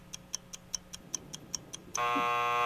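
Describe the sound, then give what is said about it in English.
A game timer for a 10-second round of clues ticks rapidly, about ten sharp regular clicks, then a loud sustained electronic buzzer blares abruptly and holds to the end. “Stuck on you after the buzzer.”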